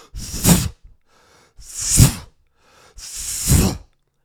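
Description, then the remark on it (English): A voice imitates the sound of diarrhea on the toilet after drinking four cups of coffee, with three loud, breathy, sputtering bursts, each rising and fading over about a second, separated by short pauses. “Those are my poopies. And that's what it sounds like.”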